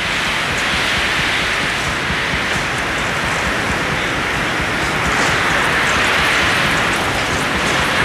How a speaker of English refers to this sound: I just want you to listen and hear. This wind is about 140 mile an hour wind we're experiencing. This is unbelievable.